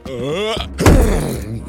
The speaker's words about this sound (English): Ursulon, you lean back, get your shoulder in front of you, and slam into the door and hear it shudder against the door frame, remaining closed and locked.